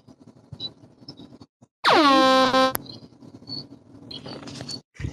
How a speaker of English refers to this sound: Awkward air horn by Brandon